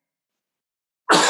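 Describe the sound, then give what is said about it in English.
A single sudden sneeze bursts out loud after a second of silence, a harsh, breathy blast that is cut off abruptly at the end. “Bless you.”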